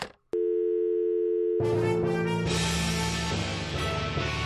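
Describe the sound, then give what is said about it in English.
A sharp click like a phone receiver being hung up, followed by a steady, loud dial tone that is soon swamped by a dense, noisy fart sound. “This is what someone hanging up the phone with a fart sounds like.”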